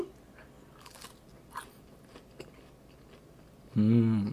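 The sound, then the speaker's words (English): Crunchy oven-baked food chewed, with a few sharp, scattered crunches over a quiet background, followed by a voice starting up loudly at the very end. “Yeah, yours are crunching.”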